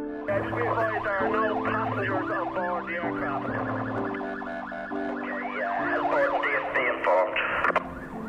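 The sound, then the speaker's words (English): Several emergency vehicle sirens of the Dublin Fire Brigade and National Ambulance Service wail at once in an emergency response at Dublin Airport, their rising and falling tones overlapping loudly and continuously, with a steady low drone underneath. “So you can see there now, that's a part of our emergency response, Dublin Fire Brigade and the National Ambulance Service.”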